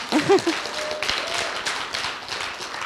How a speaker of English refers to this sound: Yeah, give God a hand. And I really have felt, I reckon God deserves a bigger clap than that.